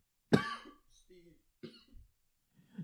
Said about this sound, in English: So let me cough it out. Cough it out.